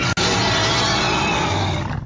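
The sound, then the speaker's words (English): A dinosaur roar sound effect: one loud, harsh, rumbling bellow held for about two seconds, on its own, tapering off slightly at the end. “My guess is dinosaur.”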